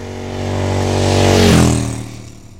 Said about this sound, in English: I currently have a Harley-Davidson Livewire, which is Harley-Davidson's first and all-new electric motorcycle. So how do you make an electric motorcycle without a great big fat engine look like a Harley?